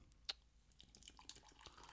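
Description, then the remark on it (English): Pepsi being poured into a glass at a table, heard as a quiet run of crackly fizz and small splashy ticks spread over a couple of seconds, with no voices. “All right, I'm going to try to pour these now.”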